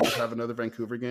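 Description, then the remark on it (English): A quick, sharp sneeze bursts out at the very start, loud, and then a person immediately carries on talking. “Bless you.”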